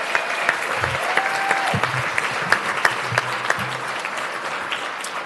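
A crowd at a Huntington Beach city meeting applauds steadily, a dense patter of many hands clapping at an even, moderately loud level, with a few sharper claps standing out and faint murmurs of voices underneath.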